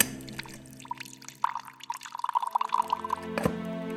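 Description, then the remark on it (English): A drink is poured into a glass at a small rolling bar cart in the corner of a room, a run of quick bubbly glugs and drips that rises slightly in pitch before a brief clink, with no voices. “Arsen made his way to a small rolling bar cart in the corner of the room.”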